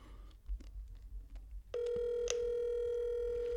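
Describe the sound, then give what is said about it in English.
After a moment of low background noise, a steady electronic phone tone starts and holds unbroken to the end, an outgoing call to a man's cell phone ringing unanswered, fairly loud. “Look at this engaged man not picking up.”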